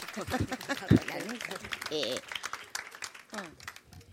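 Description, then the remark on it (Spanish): An audience applauds at the opening of a recorded presentation session, a steady, dense patter of claps while voices talk and call out over it for a few seconds. “Un aplauso, por favor.”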